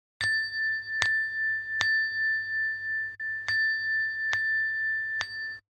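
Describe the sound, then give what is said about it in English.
A meditation bell is struck six times to start zazen, in two evenly spaced groups of three, each strike ringing with a clear, sustained tone over a faint low hum. No one speaks. “That's Jingle Bells. Jingle Bells, yes. Also the start of Zazen.”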